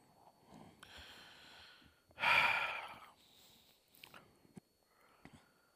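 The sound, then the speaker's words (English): A single drawn-out yawn from someone who is very tired, fairly loud: a low voiced groan swelling into a strong airy exhale, then quiet breathing and small mouth sounds trailing off. “Stop yawning. I can't help it. I'm so tired.”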